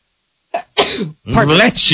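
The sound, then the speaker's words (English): A single fairly loud sneeze with a short intake before the sharp burst, followed right after by someone talking. “Bless you.”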